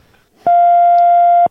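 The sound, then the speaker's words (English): A single steady electronic beep, the telephone hold tone heard while on hold during a call to Royco Insurance. It holds one pitch for about a second, loud and unbroken, then cuts off abruptly. “Am I going to get the Tesla coil or the beep? I guess I'm getting the beep.”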